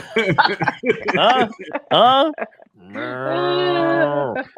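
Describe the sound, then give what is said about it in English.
A person imitates a cow, letting out a long, steady, droning moo after some quick talking and laughter, the vocal moo sustained for well over a second. “Are they booing or mooing?”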